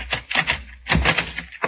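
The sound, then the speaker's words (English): A door opens with a rattling clatter of the latch and handle, a few sharp clicks and thumps in quick bursts, with no voices over it. “Open the door.”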